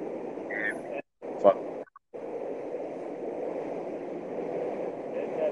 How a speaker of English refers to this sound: That's the train. Yeah, I hear the train that time. So we'll leave it on that note. We'll let the train pass.